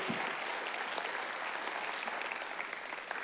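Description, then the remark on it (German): A crowd applauds steadily, dense clapping at a fairly even level throughout, sounding like a large audience with no voices standing out. “Lass es Ihnen einen Applaus gedanken, dass ihr dafür sind.”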